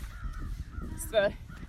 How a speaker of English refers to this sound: We have a lot of whatever those kind of birds are. Crows, ravens, I don't know. I don't know what the difference between a crow and a raven is.